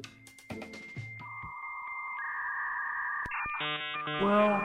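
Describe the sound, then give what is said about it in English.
A 56K dial-up modem connecting: short dialing beeps, then long steady whistling tones, a few sharp clicks, and finally a dense, warbling screech of handshake noise, clear and fairly loud. “I still remember the sound of that glorious 56K dial-up modem. Can you hear it?”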